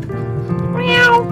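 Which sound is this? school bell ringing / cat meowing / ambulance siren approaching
cat meowing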